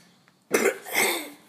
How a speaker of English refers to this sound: Sorry, let me just clear my throat for a sec.